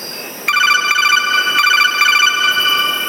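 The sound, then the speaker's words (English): A telephone rings on an outgoing call with a bright, warbling electronic trill that starts abruptly and keeps going steadily for a few seconds, fairly loud, with no one talking. “I'm calling him.”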